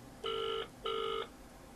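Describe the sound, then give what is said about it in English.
A phone ringing tone sounds in two steady electronic bursts of about 0.4 seconds each, separated by a short gap, clear over faint background hiss, as someone phones a woman. “Wait, are you ringing her with your number on?”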